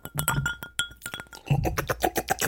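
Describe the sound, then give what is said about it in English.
Ice cubes clink and rattle against a glass of whiskey on the rocks handed over by a bartender, in a quick, busy flurry of bright, sharp ticks, with a brief pause before another burst of jostling clinks. “The bartender hands Mr. Collins a whiskey on the rocks. Let's hear that.”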